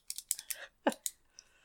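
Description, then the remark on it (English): A rapid, irregular series of sharp metallic clicks from hair pins in a hair bun, fairly crisp, with a brief pause before a few more taps trail off; no voices. “The pins are clicking.”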